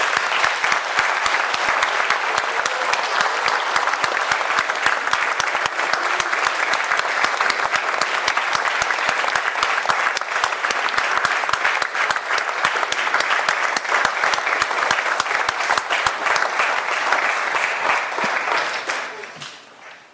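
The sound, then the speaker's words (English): An audience applauds steadily for about twenty seconds, a dense crackle of many hands clapping at an even, loud level before fading out at the end. No talking over it. “As they're doing this, let us also give one more great round of applause.”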